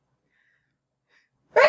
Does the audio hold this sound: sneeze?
yes